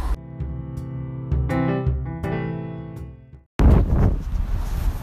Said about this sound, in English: Tell you what, potties, it is grey and miz, and it is raining, and it is incredibly windy, but it's really nice to get out, even so, just to stomp around a bit, you know, stretch the legs, and so on.